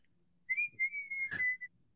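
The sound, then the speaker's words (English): A person whistles a short, clear tune of a few sustained notes, fairly loud, in reference to a whistle from the Hunger Games, with a brief soft knock partway through. No one speaks. “I just made a whistle sound.”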